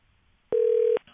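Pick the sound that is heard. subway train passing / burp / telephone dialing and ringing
telephone dialing and ringing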